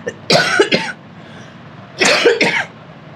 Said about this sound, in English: And just a minute, I'm gonna cough.